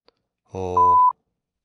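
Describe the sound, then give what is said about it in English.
A single steady, high-pitched censor bleep lasting about a third of a second cuts in over a spoken word, masking it abruptly, with a brief burst of voice just before it. “Hey, let's go with the explicit tag so I won't get beeped.”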